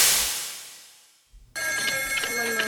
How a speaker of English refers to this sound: Got the phones ring off the hook.